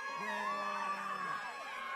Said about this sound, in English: A lot of the crowd cheered, but there were some boos as well from the basketball players who stopped practicing to come over and watch.